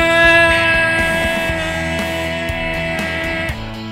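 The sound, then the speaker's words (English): A voice imitates the game horn heard at Clippers and AAU games with one long, steady, blaring tone held for about three and a half seconds, while low rhythmic thumps pulse underneath. “You get to make the sound of the horn.”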